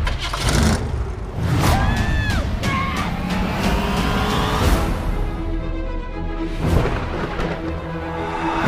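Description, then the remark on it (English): A station wagon engine drives, rumbling steadily and revving so its pitch climbs and sweeps, with rattling road noise throughout and a second surge of acceleration near the end. “You went with station wagon?”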